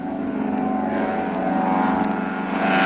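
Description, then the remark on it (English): A propeller plane's engine roars steadily as it takes off from the water and heads toward the trees on the other side, its loud droning hum building slightly toward the end, with no voices. “There he goes. He's off the water.”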